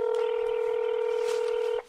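A phone number is dialed to call debt collectors: one steady electronic keypad tone holds for almost two seconds, then cuts off abruptly, with faint background noise underneath.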